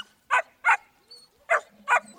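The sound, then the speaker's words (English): A German Shepherd dog barks four times in two quick pairs, sharp, with short gaps of quiet between the barks. “You want to bark for me?”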